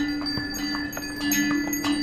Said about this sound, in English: Donkey trains. I remember the recurring sound of bells from the donkey trains carrying various loads along the trail.